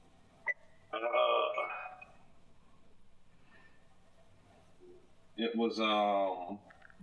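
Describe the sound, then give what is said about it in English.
A phone rings in two loud, bright electronic bursts, each lasting about a second, with a few seconds of near-silence between them. No one talks. “Fucking phone. Where the hell is it?”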